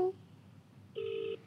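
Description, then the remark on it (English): A phone line ringing on an outgoing call: one steady electronic tone burst lasting under half a second, preceded by a brief faint beep, with no voices. “Okay, wow, that's ringing.”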